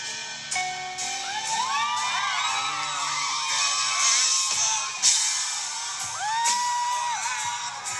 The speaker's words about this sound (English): When the song is finally released and he plays it at his concert, the whole crowd is screaming it at the top of their lungs.